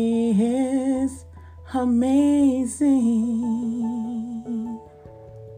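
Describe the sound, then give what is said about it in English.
A solo voice sings long, sustained melodic phrases, fairly loud, over a soft, steady instrumental backing that hums beneath it throughout. “It was a song I wrote for I was in my feelings when I wrote it, but at the same time, I think it's self-empowering, and also it's a song that I dedicate to my sister that I lost this August.”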